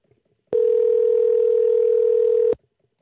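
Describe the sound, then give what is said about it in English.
A steady telephone dial tone hums for about two seconds, loud and continuous, then cuts off abruptly. No dialing beeps follow, and no one speaks. “Here we go with the phones.”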